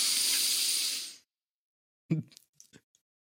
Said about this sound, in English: And out. When I was breathing in, it sounded so fucking nasally.